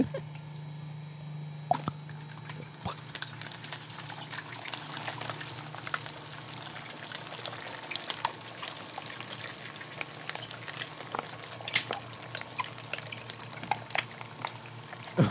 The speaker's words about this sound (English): That is, you know that slime that kids make out of like laundry detergent? Yeah. You know, the slime, you can make it at home with glue and I think there's detergent. And household items.